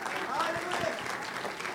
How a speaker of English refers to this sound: Come on, let's clap our hands. Hallelujah.